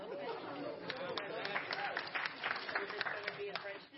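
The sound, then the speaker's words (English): An audience applauds a speaker's 1,427-day Duolingo streak, a dense patter of many hands clapping mixed with murmuring crowd chatter, holding at a fairly even loudness throughout before tapering slightly at the end. “No, it won't be in French, but I appreciate the applause.”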